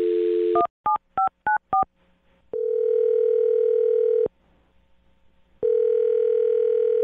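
A steady telephone dial tone cuts off into five quick touch-tone beeps as a phone number is dialed, then a long ringback tone sounds twice with a silent pause between, loud and clear with no voices.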